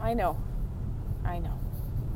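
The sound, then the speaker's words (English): A steady low road rumble fills the inside of a moving car, constant and fairly loud, while a voice speaks two short bursts over it. “All right, we're in the car again.”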